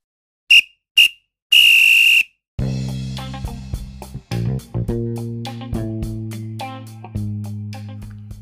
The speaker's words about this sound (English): Well, there goes the final whistle.